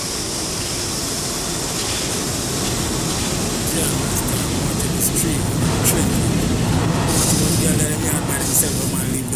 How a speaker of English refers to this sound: Express train. The next stop is New Lots Avenue.